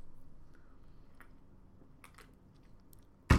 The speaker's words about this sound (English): And then before I move on to the AFC South, I'm going to crack a little beer here. Just give me 1 second. What do we got? A little vacation Corona. Listen for it. Wait for it. Woo!